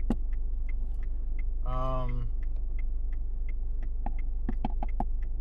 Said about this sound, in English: And, you're gonna hear some ambient noise from outside my car.